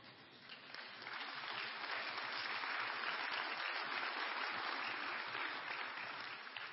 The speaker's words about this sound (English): It was nice of you to applaud, but I wasn't really waiting for that.